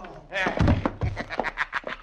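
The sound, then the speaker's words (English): Two heavy, dull punching thuds land on a man's jaw about half a second apart, loud, with a man's excited voice talking over and around the blows. “And now two times in the jaw. There is one, and there is the other.”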